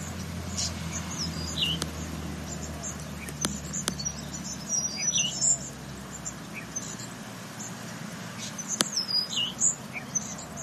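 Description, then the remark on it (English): Thin, high-pitched chirps from a tiny finch in the Australian bush come in scattered little bursts over a low outdoor rumble, with a few sharp clicks in between; fairly soft. “It's a cool, tiny little finch here.”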